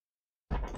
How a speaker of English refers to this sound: That chair does not sound healthy.